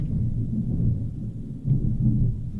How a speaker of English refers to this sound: You guys hearing this thunder? Yeah, that was thunder. We only record when it storms now, apparently.